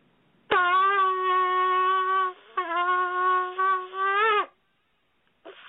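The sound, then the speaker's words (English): A shofar, blown during a phone call, sounds one long, brassy blast of about four seconds, dipping briefly midway, then resuming with a slight waver before cutting off; a short faint sound follows after a pause. “This is one of the sounds of the shofar.”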